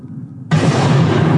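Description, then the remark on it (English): A low rumble suddenly erupts into a loud, sustained roar of bass and hissing spray as depth charges hit the water and explode, churning the sea, with high frequencies mixed into the bass and no voices. “The sound of those depth charges hitting the water, the sound that you can hear, the higher frequencies mixed with the bass in there.”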